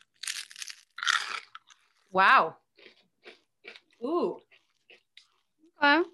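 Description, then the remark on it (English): Loud crunching of crisp cauliflower snack chips at the start, followed by scattered chewing clicks, with short exclaimed reactions from a voice breaking in between bites. “Are you ready to crunch to the beat?”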